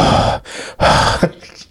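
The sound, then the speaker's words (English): Loud, breathy huffs blown straight into a microphone: two long rushing exhales with a short inhale between, then a softer trailing breath, noisy and wideband with no voice. “I got distracted by your big-ass schnoz breathing all over the mic.”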